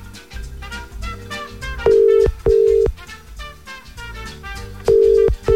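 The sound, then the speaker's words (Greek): A steady telephone ringback tone repeats in loud, roughly one-second bursts with short pauses between them, playing over background music while the call goes unanswered. “Την παίρνουμε τηλέφωνο σήμερα.”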